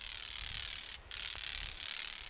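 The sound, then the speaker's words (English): A male bandwing grasshopper's wings crackle in flight, a rapid train of dry, high snapping clicks like a ratchet made by the wing veins flexing, running steadily with a brief gap partway through and no voices. “The grasshopper's loopy flight generates a train of snaps.”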